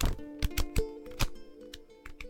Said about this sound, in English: The sound of me shuffling and flicking through some merchandise that you could get your hands on. I'm an artist and I have some prints